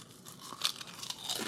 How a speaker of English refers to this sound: Oh, hear that crunch? So crunchy.